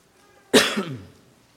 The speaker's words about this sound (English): I am starting to feel a little bit better, so if I give a cough here and there, it's just trying to finalize itself.